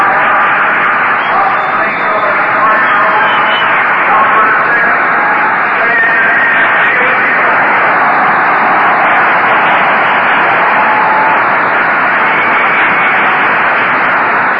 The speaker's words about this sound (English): Well, here he comes. Stan the man, Muccio, is going to bat for Juan Marichal. And there's the roar from the crowd before Muccio is even introduced.